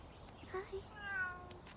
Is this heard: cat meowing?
yes